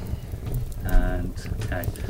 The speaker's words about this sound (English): So, fire, crackling, sitting around the fire sound effects.